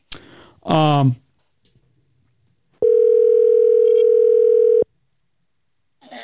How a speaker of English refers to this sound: Phone's ringing. I don't know if Jose is going to pick up.